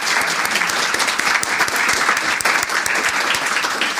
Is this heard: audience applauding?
yes